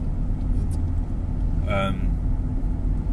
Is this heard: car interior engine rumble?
yes